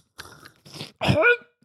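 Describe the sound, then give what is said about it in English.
Close, wet slurping of a drink right into the microphone in three quick bursts, the last one louder and ending in a short voiced exhale. “Listeners love it when you slurp right into the mouth. Into the mic.”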